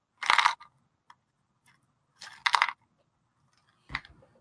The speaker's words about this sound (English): Get a bad cough there? It's muted now. Hello. Hello. Oh, yeah, I got leftover chest stuff from the cold just sometimes.